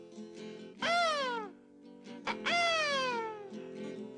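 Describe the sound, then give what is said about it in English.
A voice imitates a mynah bird with two loud, drawn-out calls that slide downward in pitch, the second longer than the first, over a soft steady musical backing. “The minor bird says,”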